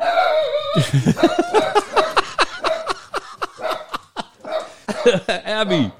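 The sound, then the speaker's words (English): A small female dog guarding a chicken house in Mississippi yaps rapidly and insistently, a long unbroken string of sharp, high-pitched barks, following a brief steady tone at the start. “Her bark is 17 times larger than she is. She keeps a guard watch on the chicken house here.”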